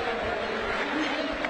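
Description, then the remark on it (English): A large stadium crowd at a Wrexham versus Newport football match applauds as Wrexham substitute Cannon and Luke Young comes on, a steady, dense wash of clapping and murmur that holds at an even level throughout. “Wrexham have subbed Cannon, and Luke Young comes on, so a good round of applause.”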